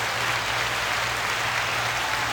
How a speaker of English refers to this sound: thank you so much for stopping by for the weekly walk. And here's your applause.